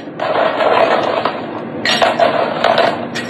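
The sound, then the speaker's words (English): Ice cubes clatter and clink into a rimmed cup for a margarita in two quick bursts, with rattling and scraping as the pieces tumble and settle. No voices are heard. “We're gonna add some ice cubes.”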